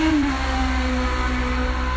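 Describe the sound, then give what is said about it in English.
A car engine hums steadily with a low, droning tone whose pitch dips slightly early on, a loud continuous whoosh of traffic noise with no voices present. “There's a car passing.”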